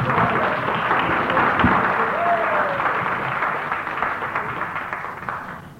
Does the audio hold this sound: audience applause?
yes